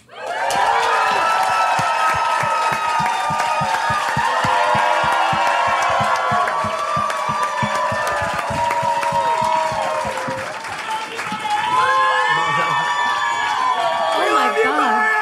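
A Vancouver audience gives a standing ovation welcoming a guest to a live show, bursting into sustained applause: dense rapid clapping mixed with loud whoops and cheers that keeps going at full strength for about fifteen seconds.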